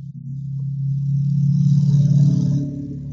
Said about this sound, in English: There's Carol going on her motorcycle again. She's out of here. Would that were mine and not just the neighbors.